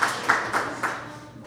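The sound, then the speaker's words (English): Clapping from an audience in Chicago, with a few evenly spaced claps standing out over a steady wash of crowd noise that trails off toward the end. “Loud applause.”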